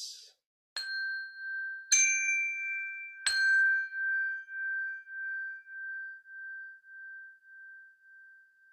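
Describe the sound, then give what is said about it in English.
A chime bell is struck four times in quick succession, each bright tone layering over the last, then one pure note rings on with a gentle wavering pulse, slowly fading toward silence. “So, you know, obviously I tend to make things sing-songy, but certainly you could just say, all right, we're going to listen to the sound of the chime bell until it fades into silence.”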